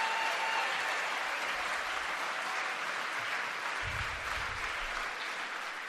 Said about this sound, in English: Listen to that loving crowd, that empathetic crowd.